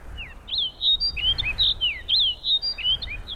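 A snow bunting sings a bright, warbling song of quick whistled and trilled notes in rapid phrases over faint low background rumble, with no voices.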